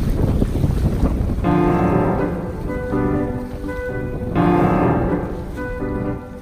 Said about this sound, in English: Clear, cold, and wildly windy.